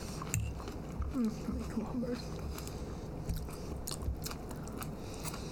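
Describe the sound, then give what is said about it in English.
Chewing with repeated crunchy bites and wet mouth sounds throughout, while a muffled voice briefly murmurs through a mouthful of food. “Well, people really like listening to us chew and talk at the same time.”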